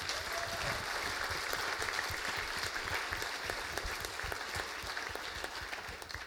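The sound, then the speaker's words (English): A crowd claps steadily, producing a dense, sustained wash of applause with many overlapping hand claps that holds roughly even in loudness throughout before easing slightly at the end. “Why don't you give these guys a round of applause?”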